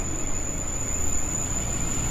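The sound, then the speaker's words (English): A train rolls past with a steady, heavy low rumble and a thin, constant high-pitched whine riding over it. The noise stays even throughout, and no one speaks. “Oh, you want to wait for the train?”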